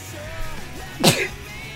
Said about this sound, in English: I love how you sneeze that way. That's just like how you sneeze. That's so funny no, to me.